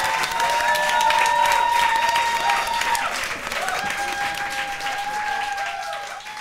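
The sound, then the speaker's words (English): A large audience breaks into loud, dense applause for the panelists that holds steady for several seconds, with a few sustained cheers or whistles riding over the clapping before it eases slightly. “I was going to ask you all to stand up and to give a huge round of applause to our beautiful panelists.”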